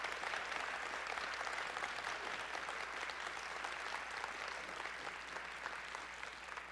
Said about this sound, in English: If you are in this room and you helped work on our stage, stand. Here we go. Stand. Why don't you give these men a wonderful round of applause?